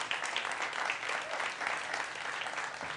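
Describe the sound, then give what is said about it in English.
An audience claps for the Lord in steady, dense applause, many hands blending into a continuous bright rattle that holds at an even level for the whole stretch with no voices standing out. “Y'all give the Lord a big hand clap.”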